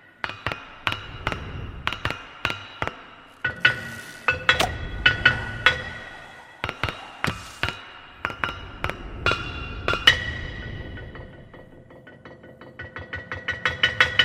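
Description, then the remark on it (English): A naturally occurring rock, not altered in any way, played as a gong by an anthropologist: struck repeatedly in an uneven, musical rhythm, each hit a bright ringing clank with a short metallic-sounding tone, some strikes louder than others, ending in a fast flurry of lighter taps. “This is a anthropologist playing a rock gong. This is a naturally occurring rock, not altered in any way, and it makes music.”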